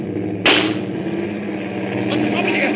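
gunshot

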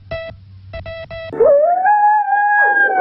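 husky dogs howling

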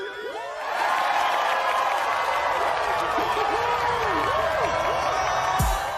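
audience applauding

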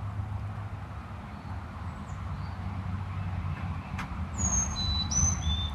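tufted titmouse calling

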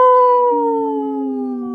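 wolf howling

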